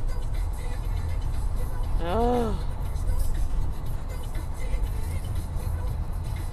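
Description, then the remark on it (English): A steady low rumble of a car driving on a freeway in traffic continues throughout, with a man briefly exclaiming partway through. “Okay, let me avoid this traffic.”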